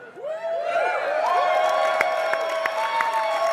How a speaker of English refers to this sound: Oh, there's three people who screamed really loud.